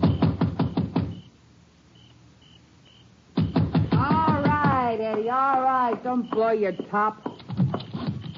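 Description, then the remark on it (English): A quick run of sharp knocks on the door of a dark country house at midnight, then a pause with a faint tone in the background, then more knocking before a man starts speaking. “I left the car on the road and slipped up to the house. It was dark. I knocked.”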